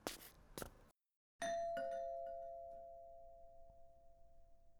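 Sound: doorbell ringing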